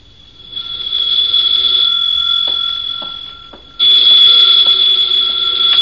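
A telephone rings in two long bursts, a shrill, steady, high-pitched electric bell tone with a brief dip between them, the second burst louder and cut off at the end.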